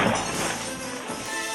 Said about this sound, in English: I stood there for a full minute, but no one came out, so I put my foot through the glass panel below the cash register.